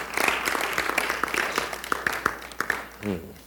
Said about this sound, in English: If you got something from that spill just now, just clap your hands.